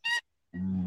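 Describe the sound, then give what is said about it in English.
A dog makes a strange noise: a brief, piercing high squeal, a short pause, then a low, steady honking moan, loud, with no talking. “What the fuck? That's my dog, man.”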